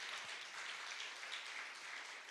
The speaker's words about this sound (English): Guys, let's give these people a round of applause. Ви можете похлопати.